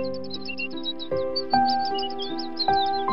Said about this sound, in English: And no doubt our editor will have added in some delightful love heart noises, sort of like birds chirping, maybe.